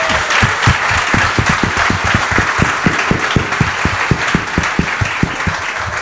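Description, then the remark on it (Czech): A round of applause from a small group, steady and fairly loud, with a few sharp individual claps standing out rhythmically from the dense patter for about six seconds, congratulating a young player on his nomination to the national team for the Karjala Cup. No one speaks. “To se si zatlouží potlesk, ne?”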